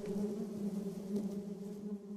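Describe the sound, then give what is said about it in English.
A steady, droning hum of many honeybees buzzing at their hive in an orchard, a dense continuous swarm sound with a slight waver in pitch and no voices. “Judith said they were warning us to go”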